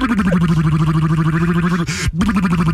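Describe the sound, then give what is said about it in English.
A voice imitates a motorboat with buzzing, fluttering lips on the Kevin and Bean Show on K-Rock 96.5, Los Angeles: a steady, loud, low rumbling drone that breaks off for a moment near the end, then resumes. “Bringing you the best motorboat sounds of the 70s.”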